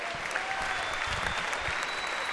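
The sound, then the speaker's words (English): A crowd applauds steadily for an honored state champion wrestler, a dense wash of many hands clapping at once, sustained and fairly loud throughout with no voices standing out. “Give a round of applause for TJ Hayes.”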